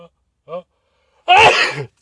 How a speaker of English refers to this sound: I'm going to sneeze right now. Oh no, this might be the first time I sneeze on a show. Oh god. See, I don't edit anything.